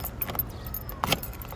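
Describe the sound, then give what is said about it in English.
Car keys jangle and clink in a few quick metallic bursts as a driver in the driver's seat puts the key into a car's ignition, with a sharper rattle near the end as the key slides in, over low rumbling cabin noise. “She unlocked the car, slid into the driver's seat, clicked my door unlocked, and put the key into the ignition.”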